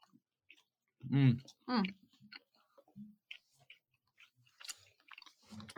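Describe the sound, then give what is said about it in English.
Crunchy chewing of chocolate-covered worms: a scattered run of small crisp clicks and crunches, with two short loud voiced sounds near the start, like a murmur or laugh. “It's a bit like, it's just crunchy chocolate, really.”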